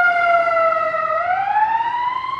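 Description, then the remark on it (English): A wailing emergency siren sweeps slowly down and then back up in pitch as police cars and an ambulance go by, loud and steady throughout with a faint low rumble of traffic underneath. “I've seen two police cars, one ambulance kind of go by.”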